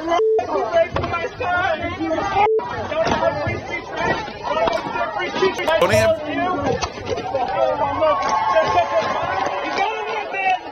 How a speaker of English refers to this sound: So now that's somebody literally screaming.